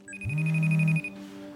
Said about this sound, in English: So we see in episode one that boundaries comes up kind of immediately because she takes this phone call from her client at 2 a.m.